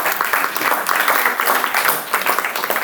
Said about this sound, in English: So can we have a round of applause for our volunteers?